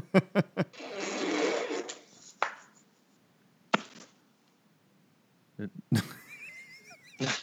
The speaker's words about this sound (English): Did somebody just fart? I don't know what that was. No, that was had a sound effect board.